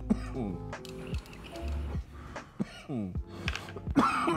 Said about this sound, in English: Nothing makes me cough like tangy.